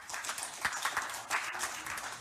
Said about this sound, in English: Somebody give God a hand clap.